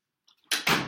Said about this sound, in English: I'm going to close this door in the office. Wait, let's see if we can.